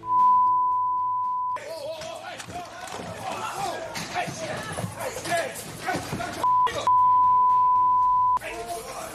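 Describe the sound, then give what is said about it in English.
A steady, loud censor bleep tone, covering an inmate cussing out a judge over his sentence in a Clark County court, opens, then a chaotic melee of shouting voices and commotion, cut again by a short blip and another long bleep before the noisy voices return. “That was the melee that we had to heavily beep, beep, beep, beep, beep, beep, beep, beep.”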